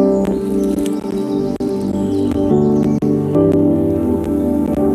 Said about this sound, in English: The first thing that's like really present is this bird recording I did.